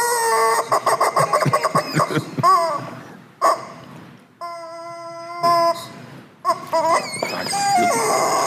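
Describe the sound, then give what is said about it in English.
A man's voice imitates a chicken, starting with a rapid run of staccato clucks, then stretching into longer, drawn-out squawking calls, loud with short pauses between. “Folks who don't even laugh, they hear this chicken first, they're disturbed.”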